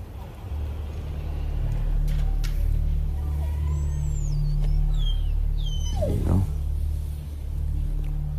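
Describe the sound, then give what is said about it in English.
A dog whimpers and yips in short, high, whistling cries over a steady low engine rumble, with a sharper yelp near the end. “Good boy. Yeah, it's all right. Don't be afraid.”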